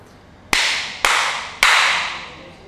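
Three sharp hand claps about half a second apart, made to sync a recording at Stronghold MMA in Singapore, each loud with a long echoing tail fading out, and no talking.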